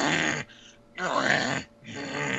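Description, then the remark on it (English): A person voices three rough, guttural, Hulk-like growls imitating the character King Hippo, each loud, separated by short pauses, with no other speech. “He talks in pretty much, you know, Hulk-like growls.”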